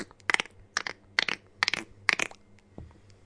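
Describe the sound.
Someone imitates a horse trotting with their mouth: five sharp, bright clicks in a steady, even rhythm, fairly loud with no talking, then a faint trailing tap.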